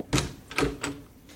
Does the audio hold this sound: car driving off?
no